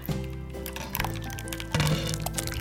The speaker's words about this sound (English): What's the sound of wooden spoon on Pyrex measuring cup?